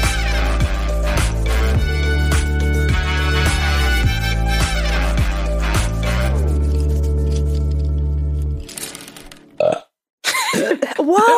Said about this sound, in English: You can burp. Well, that was real. It wasn't a fake one. Because I am over here enjoying a Moscow Mule. And I got me a White Claw, baby.